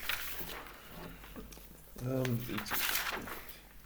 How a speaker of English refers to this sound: Anyway, I found my notes now. Sorry about the rustling.